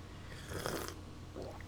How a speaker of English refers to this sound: Let me get a sip of this tea real quick.